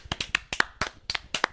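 About ten quick hand claps in a brisk, slightly uneven rhythm, each a sharp crisp snap, with no voices over them.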